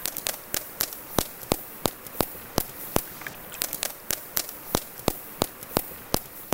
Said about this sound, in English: Turns out the key to underwater echolocation is vocal fry. Yeah, that creaky voice that some people love to hate, only this time in a whale. Here's what it sounds like.